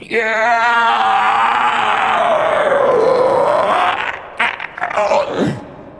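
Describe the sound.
A voice imitates a bizarre creature screech: a loud, strained, warbling cry held for about four seconds, sliding in pitch, then breaking into ragged, gurgling bursts before cutting off.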